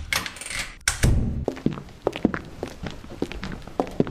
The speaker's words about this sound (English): The door opens as Carl Simmons and Stone leave room 308.